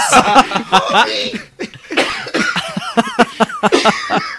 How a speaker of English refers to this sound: As if you weren't already coughing hard enough, you had to try and do the Marge voice between coughs.